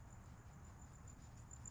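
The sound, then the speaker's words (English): A steady, high-pitched trill of crickets chirping at night in the background, continuous and fairly faint, with a low rumbling background and no voices. “Got the sound of the crickets in the back.”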